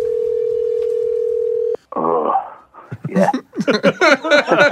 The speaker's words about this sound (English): So anyway, he was there yesterday for the game, and we thought we'd call and see how things were going, if he even answers his cell phone this morning.